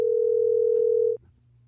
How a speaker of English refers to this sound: We take calls. Didn't you hear the phone ring? Yeah. Listen, I hear it. Oh, there it is.